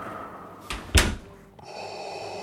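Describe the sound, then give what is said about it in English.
A door is opened: a short click followed by a louder thump of the latch, then the background shifts into a steady hum as it swings open to let in an arriving visitor. No one speaks. “Yeah, could you get the door? Yes, I'll get it.”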